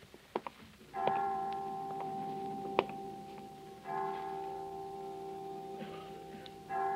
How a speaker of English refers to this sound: Well, 5 o'clock. I didn't know the children's home had chimes.